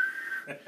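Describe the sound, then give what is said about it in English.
Someone uses their voice to imitate the whistles of gym teachers blowing at a basketball slam dunk: one short, shrill, steady whistle tone, fairly loud, ending in a brief breathy burst. “Just fucking, hangs on to the rim, and I get up, and you just hear whistles, like every gym teacher in that bitch.”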